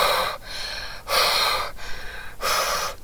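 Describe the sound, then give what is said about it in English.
Heavy, exaggerated breaths by a workout instructor demonstrating breathing during an exercise interval, three long airy bursts in a steady rhythm, each a loud rushing inhale or exhale with brief quiet gaps between. “That probably sounds ridiculously creepy, me breathing like that.”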